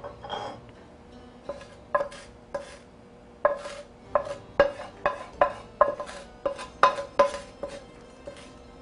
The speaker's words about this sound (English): So I'm just mixing everything together, and eventually I'm gonna be shaping it with my hands. It's still pretty hot, so you wanna wait a little bit until it gets cooled down. But I'm gonna start transferring it into a bowl so I can shape it.